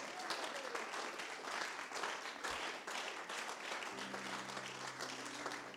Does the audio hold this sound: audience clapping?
yes